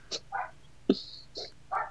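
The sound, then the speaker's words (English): A dog barks in a handful of short, sharp bursts with brief gaps between them, moderately loud, with no talking over it. “Even the dog's upset. Yeah, my dog is, like, very upset.”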